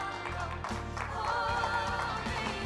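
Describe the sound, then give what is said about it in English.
A standing audience claps steadily in praise to God, a dense wash of many hands patting together, with low sustained musical tones humming beneath throughout. “Come on, give God a praise clap as you're standing.”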